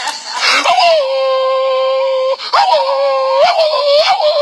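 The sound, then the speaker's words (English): Dogs whine and whimper in long, drawn-out, wavering cries, broken by a few sharp yelps or barks. Loud, with no one talking. “The dog in that area.”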